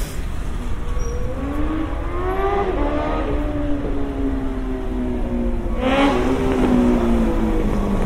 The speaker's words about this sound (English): Something about that particular motorbike noise that feels like moaning or whining, or you know, like a dog that's a bit stressed.